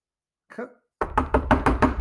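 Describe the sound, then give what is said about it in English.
A soft brief rustle, then a quick run of about six firm knocks on a door in a steady rhythm, with no one talking. “Come in. The door's open.”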